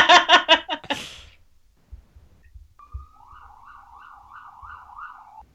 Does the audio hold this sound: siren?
yes